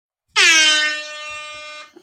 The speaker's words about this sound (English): So it became my air horn. I don't know. It just suddenly became Nick's air horn, guys. I can still see it's got. Yeah, just exactly like that. It's still got duct tape on it.